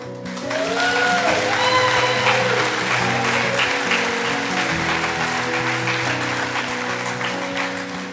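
The Central Christian church audience gives a big hand to a woman, clapping steadily and loudly for several seconds, a dense wash of applause with sustained keyboard chords playing underneath.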